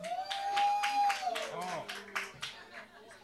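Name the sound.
audience clapping hands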